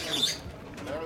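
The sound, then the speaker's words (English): Birds chatter and cackle in a quick, busy burst by a hotel on the peaceful banks of the Niger River, their calls moderately loud against a soft outdoor background. “We begin at our hotel on the peaceful banks of the Niger River with the sound of cackling birds.”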